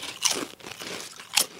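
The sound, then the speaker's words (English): Loud, crisp crunches of someone biting into thick, slightly dark, hand-cooked kettle-style potato chips cooked in peanut oil: a sharp bite, a stretch of softer chewing, then a second bright crunch, with no talking. “These are kettle style, right?”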